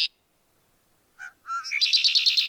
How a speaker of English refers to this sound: A male red-winged blackbird, they're among the earliest birds to set up territories.